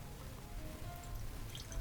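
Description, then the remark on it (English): A quiet, steady trickle of whiskey (Kentucky Owl, 50% alcohol) being poured into glasses, with faint splashing and dripping running continuously for a couple of seconds, with no talking. “So we'll just do normal pours, I guess.”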